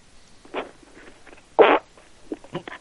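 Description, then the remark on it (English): A muffled fart over a phone line, heard as a loud, brassy burst in the middle, surrounded by several shorter, fainter sputters with a thin, band-limited quality. “Was that a fart? They farted on their phone.”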